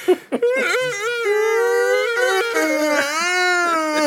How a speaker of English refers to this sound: My personal favorite, the people that verbalize their yawns.